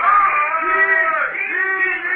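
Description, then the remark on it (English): A crowd of soldiers shouting a war cry together, many voices merging into one loud, sustained roar that swells and dips slightly without pause. “Yeah, but what's all that ding, ding they're shouting?”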